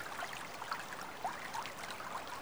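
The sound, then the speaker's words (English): A brook's water flows steadily over wet round stones in the morning, a soft continuous rushing with small bubbling gurgles rising now and then. It sounds fairly quiet, with no voices. “Water flowing over rocks.”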